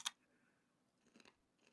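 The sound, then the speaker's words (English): Quiet crunching of thin, crispy, homemade self-cured bacon being chewed: one sharp crisp snap, a brief pause, then a couple of softer crackly chews, with no talking. “Damn, that's crunchy bacon. Yeah, that's super crunchy. This is now a bacon ASMR podcast.”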